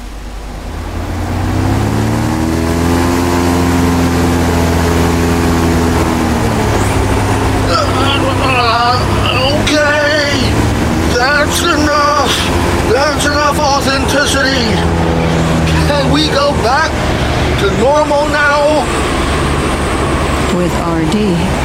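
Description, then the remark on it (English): A loud, continuous simulated furious gale on the Sea of Galilee roars with a low, droning howl of wind and rushing water, and several voices shouting over it from about seven seconds onward. “Furious gale on Sea of Galilee program. Do it now. Activating now.”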